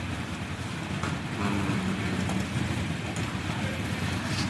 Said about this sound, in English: You still hear that, right? That's the train.